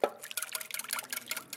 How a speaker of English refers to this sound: So we're gonna pour that hopefully fully beaten custard in.